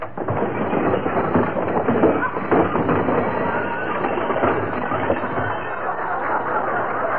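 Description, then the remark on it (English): A long, loud avalanche of junk crashing and clattering out of an overstuffed closet as its door is opened, a dense rumbling jumble of tumbling objects that keeps pouring out for about seven seconds without letup. “Gotta straighten out that closet one of these days.”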